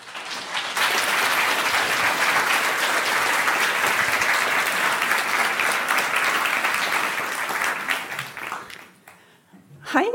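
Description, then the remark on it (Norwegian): Sustained applause from a large lecture audience welcoming a speaker, a dense, steady roar of clapping lasting several seconds before fading out, with a voice starting to speak at the very end. “Gi henne en varm applaus.”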